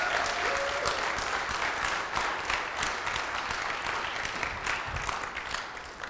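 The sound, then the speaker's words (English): Sustained applause from a large audience, dense clapping that fills the whole stretch at a steady, loud level before easing slightly near the end. “How about giving us an insane appreciation?”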